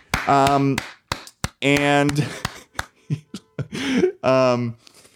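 Sharp hand claps crack out at uneven intervals to launch a new segment called Chuckle Mail, about ten crisp smacks, mixed in with loud sung, drawn-out vocal tones from people chanting along.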